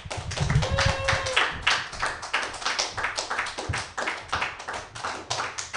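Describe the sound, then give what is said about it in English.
A comedy show crowd applauds steadily for several seconds, dense overlapping handclaps forming a continuous, lively patter with small swells, and a brief whistle or cheer near the start. “I don't know who's next, so just keep clapping.”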